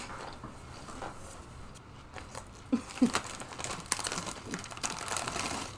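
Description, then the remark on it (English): Someone crunching on barbecue chips: irregular dry crackles and crinkly bites, with a couple of sharper, louder crunches in the middle and no talking. “I hear you crunching. I'm like, oh, they sound good. Like a little cluster coming out.”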